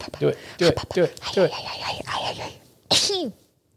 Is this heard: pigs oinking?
no